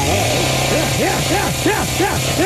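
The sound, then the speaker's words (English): A chainsaw engine revs in a quick series of rising and falling bursts over a steady low drone, loud, with no pause between the throttle blips. “It's Chainsaw Friday. We give away chainsaws on Fridays because it's rock and roll, brother. Here. A lot of metal. Rev it up”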